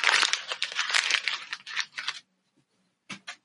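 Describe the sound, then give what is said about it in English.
Loud crinkling and crumpling of a printed paper as a man balls it up for about two seconds, then a pause and two quick soft rustles as he throws it over his right shoulder. No one speaks. “For those listening, he balled up the paper and threw it over his right shoulder.”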